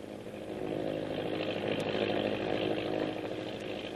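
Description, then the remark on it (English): A steady, droning engine hum of a Navy patrol plane in flight on its way to meet a destroyer, rough and buzzing with a low harmonic growl, rising in over the first half second and then holding constant throughout, with no voices. “the Navy patrol plane is winging its way to a meeting with the destroyer”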